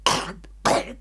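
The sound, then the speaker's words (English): A man imitates a throaty, gurgling cough, two harsh rasping bursts with a short gap between them, no other talking. “I was trying to figure out if I could do a Gollum impression earlier this week. I can't really, but I can do the cough.”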